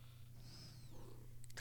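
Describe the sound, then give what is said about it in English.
A female cat sitting on a lap purrs steadily and softly throughout, a low continuous rumble, with a faint high whine and a few light clicks near the end. “You just hear her purr.”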